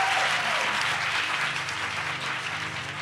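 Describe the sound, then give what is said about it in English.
Steady, dense applause from an audience at the Third Coast conference for the producers who pitched that day: a loud continuous wash of many hands clapping with no pauses and no speech over it. “A round of applause for the producers that pitched today.”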